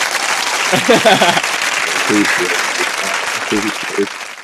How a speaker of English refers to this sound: hold on, we'll give them some claps. We just got the soundboard out.